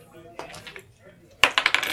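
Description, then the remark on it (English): Dice, including a d20, clatter across a table as players roll initiative in a tabletop game: a soft rattle first, then a louder burst of sharp, rapid clicks as they tumble and settle. No one speaks. “So yeah, everybody go ahead and roll initiative.”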